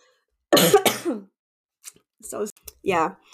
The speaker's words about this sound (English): poor Miriam is gonna have to edit my coughing because I keep getting a tickle in my throat